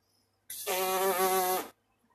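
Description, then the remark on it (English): A single sustained lip buzz, a steady, raspy pitched drone lasting just over a second, fairly loud, with no talking over it. “And you say you got a buzz.”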